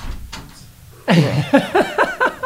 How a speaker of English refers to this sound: You don't even try to be quiet, just walk in. We'll have to edit out the... Adam's family creaks.